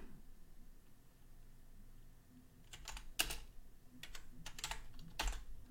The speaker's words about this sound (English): Probably hear the typing, huh?